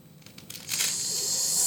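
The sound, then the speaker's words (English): A velcro fastener on a pocket is ripped open in one long, steady rasping tear, fairly loud, after a few faint clicks and rustles, with no talking. “That's Velcro. It's not a strap.”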